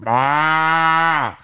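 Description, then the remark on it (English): A single long, loud bawling moo held for over a second with a steady pitch, then cut off, delivered by a voice imitating a cow, with no other sounds around it. “And I go, and I turned, and one of them goddamn cows stuck her head in there and bawled.”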